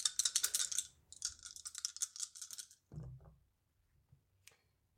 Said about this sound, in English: Make me do the same die roll again. Let's see how. Okay. Exact same roll?